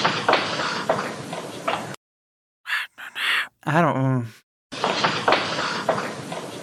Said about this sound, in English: I just heard, like, footsteps. Yeah, there's definitely some footsteps. Wait, let's hear it again. So So there's like a whisper among the footsteps.